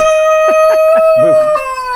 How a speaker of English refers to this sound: Just bear with this. Sorry about the rooster. He's just very enthusiastic and wants to participate.